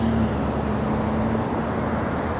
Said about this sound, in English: It's June 27th, Wednesday at 8:10 a.m. I'm waiting for the bus here.